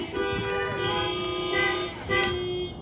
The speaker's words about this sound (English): And this morning, if the Lord has done something for you, I just want you to either say amen or honk your horns or anything else just to say, you know what, yes, the Lord has done so much for me.